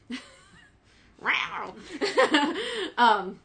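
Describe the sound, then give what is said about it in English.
A deaf male cat yowls loudly and insistently, letting out several drawn-out, wavering cries in quick succession, after a brief quieter moment at the start. “That's my deaf cat who's yelling who can't hear himself.”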